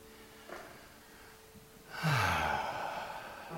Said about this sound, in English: So I'm going to invite you to take a big, deep breath with me.